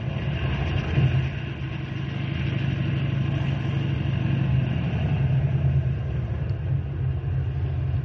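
A car engine idles steadily throughout, a continuous low rumble with an even droning hum that holds at a moderate level without revving. No one speaks.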